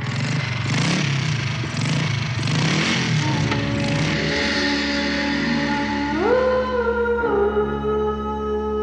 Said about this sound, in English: How did you decide to get in the screeching wheels and the motorcycle revving up, all the sound effects? Why did you decide to put it in?